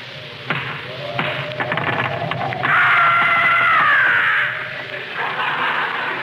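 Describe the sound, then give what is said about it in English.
Several hollow knocks on a house's front door in the dark, a couple of single raps and then a quicker cluster, followed by a long, wavering high-pitched creak over a dim background. “Knock on the door, Rochester.”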